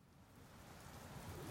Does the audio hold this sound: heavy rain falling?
yes